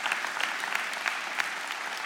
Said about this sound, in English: And as you share that round of applause, that's for you this morning. You've done that.